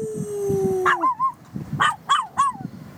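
A dog lets out several short, rising-and-falling howls close by, one after another over a low rumbling background, with a steady whistle-like tone fading out early on.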